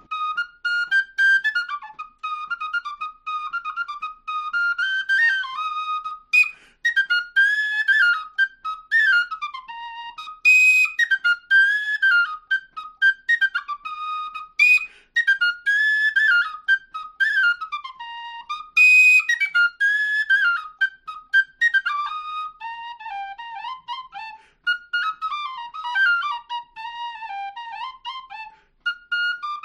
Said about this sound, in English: I'll just play it for you quick on whistle, and then I wound up kind of losing my brain, figuring out how to do a big old dumb thing with it. So here's the basic melody on F whistle first.